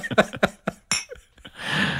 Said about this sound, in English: So shall we chink a glass together? I've got some tea and you've got some... Juice, it seems.